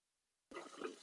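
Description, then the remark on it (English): After a moment of silence, a steady rush of water suddenly starts and keeps pouring, fairly loud, as water is dispensed from a refrigerator. “I'm getting water out of my fridge. So just in case you hear that, that's what it is.”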